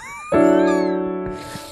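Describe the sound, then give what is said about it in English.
A quick cat meow blends into a loud, sustained musical chord that rings out for over a second and slowly fades, a short sting with no talking. “But yeah, that's the meow chord.”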